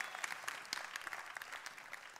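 A crowd breaks into steady applause for the speaker's team, many hands clapping in a dense, crackling patter of sharp claps at a fairly even level throughout, with no voices standing out.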